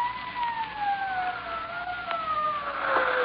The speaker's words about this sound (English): Well, here they come. Oh, are they? How do you know? Sirens. Can't you hear them? What's that? I said sirens. That's how I knew the police were